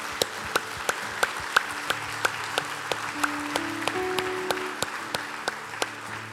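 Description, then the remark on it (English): An audience gives God a round of applause, clapping in steady unison, roughly three sharp claps per second, over a soft bed of sustained low musical tones, with no talking. “Hey, would you give God a round of applause?”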